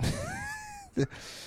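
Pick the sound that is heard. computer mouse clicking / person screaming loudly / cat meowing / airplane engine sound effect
cat meowing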